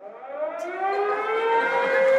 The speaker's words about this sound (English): I have some better alarm systems. Do you? I do for them, all right? Here's your standard alarm.